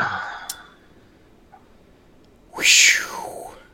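A single loud cat meow, drawn out and falling in pitch, follows a few seconds of near silence broken by a faint click. No one speaks.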